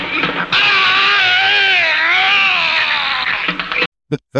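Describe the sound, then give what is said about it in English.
A voice imitates the strangled scream of a man taking a hit in a film fight scene: one loud, strained, wavering cry held for about three seconds, then abruptly cut off, followed by a couple of brief clipped bursts. “This fight scene there's one moment where one of the guys, he takes a good hit from the other one and he does this strangled scream.”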